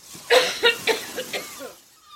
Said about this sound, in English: Well, aren't you going to ask if she's going to live? Live? That's barely a cough.